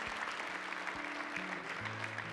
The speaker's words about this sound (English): Give the Lord a big hand clap right now. Come on.